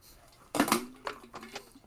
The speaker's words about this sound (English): Whoops, knocked some water over. Oh my god, it's everywhere.